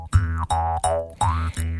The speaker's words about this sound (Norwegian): Ukas bransje. Hey! Vi har fått jingles. Vi har fått jingles.